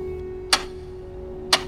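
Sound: clock ticking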